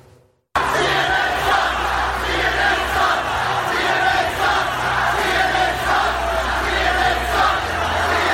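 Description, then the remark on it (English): A large crowd at a Trump rally in Tampa shouts and jeers continuously at members of the press, a dense roar of many angry voices shouting profanities, with chanting swells, loud and unbroken for several seconds after a brief quiet start. “fellow citizens, fellow Americans, people you'd say hello to on the street, shouting profanities, making obscene gestures, emptying their rage on members of the press covering last night's Trump rally in Tampa.”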